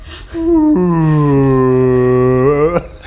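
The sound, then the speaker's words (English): A human voice imitates a whale call with one long, loud, moaning tone of about two seconds that starts low, holds steady, then bends upward before cutting off. “And you speak to whale through...”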